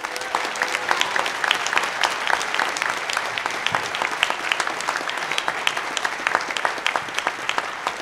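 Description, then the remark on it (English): An audience applauds a panel steadily, many hands clapping in a dense, even patter that holds at a moderate level for about eight seconds without fading. “Please give a round of applause for our panel.”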